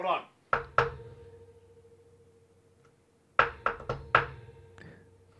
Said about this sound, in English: I must have knocked 10 times and still there was no answer. That's when I realized the knob was loose and the door was cracked open.